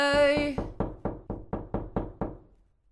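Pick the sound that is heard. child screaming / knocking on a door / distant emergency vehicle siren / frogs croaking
knocking on a door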